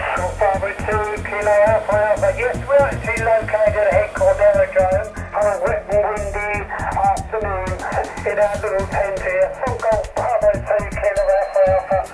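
A crackly, narrowband voice transmission over HF amateur shortwave radio from a special event station set up indoors during bad weather, with steady hiss and static clicks running through it, loud and continuous for the whole stretch.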